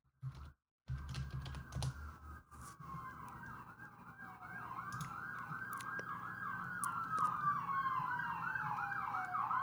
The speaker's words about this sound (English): Oh, man, do you hear those sirens?